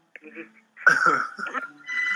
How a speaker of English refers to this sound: You know someone's phone ringing.